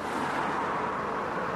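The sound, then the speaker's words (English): A 1951 Hudson car drives along steadily, its engine and tire noise blending into a constant, dense rumble and hiss, with no voices. “The car is a 1951 Hudson, and it's one of the first cars built for high-speed travel on superhighways, and that's why I bought it.”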